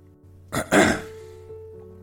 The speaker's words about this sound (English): I pause, drinking some water, clearing my throat.